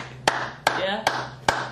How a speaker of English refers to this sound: If you clap, that's the two palms of your hands meeting.